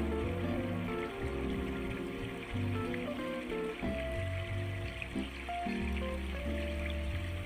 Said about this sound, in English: imagine that this lake is fed by a tiny spring high up in the mountains, a cleft in white stone covered by this gentle burbling of crystal waters. Imagine yourself standing next to this water, watching it pour gracefully over pebbles.